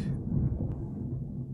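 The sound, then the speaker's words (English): A low, continuous rumble of thunder during a thunderstorm rolls through from start to finish, deep and muffled, with no voices over it. “We are recording during a thunderstorm, apparently.”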